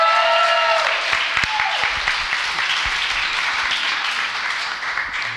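A crowd bursts into sustained, dense applause, steady and loud throughout, with a few faint voices and a brief high tone near the start before the clapping tapers slightly at the end.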